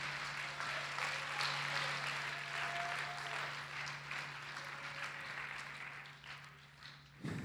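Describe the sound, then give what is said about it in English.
A crowd applauds steadily, clapping to praise and thank God, a dense wash of many hands clapping at once that holds for several seconds before thinning out, with a low steady hum underneath. “Can you clap your hands with everything you've got and thank God for the blood that he shed?”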